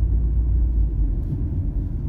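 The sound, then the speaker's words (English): Steady low road rumble from inside a car driving at a moderate pace, a constant deep droning hum with no speech, continuous and fairly loud throughout. “They're just making me drive at a moderate pace, and I do not want to do that, but that's okay.”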